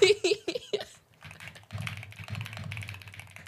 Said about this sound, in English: I hear the intense typing.